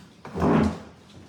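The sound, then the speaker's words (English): A drawer slides open or shut in one smooth, rumbling scrape lasting about half a second, moderately loud, with no voices around it. “And the drawer and the stuff.”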